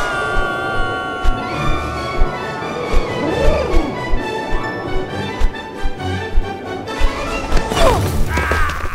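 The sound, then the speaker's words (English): A cartoonish crash landing in the Solomon Islands, South Pacific: a steady run of thumps and clattering impacts over a busy, ringing musical bed, with sweeping whistles, building to a loud, noisy smash near the end. “Well, I'm a little banged up, but not even that crash landing could crack this coconut”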